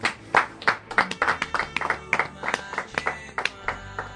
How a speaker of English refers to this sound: I thought you'd clap for that.